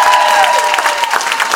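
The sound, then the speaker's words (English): A live audience applauds loudly and steadily, dense overlapping claps filling the whole moment, with a faint whistle-like tone sliding through near the start. “Clap it up one more time for my brother”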